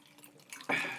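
A single bright clink of glasses raised in a toast in a recording studio, sharp, with a short ringing tail that fades out. Faint background noise comes before it.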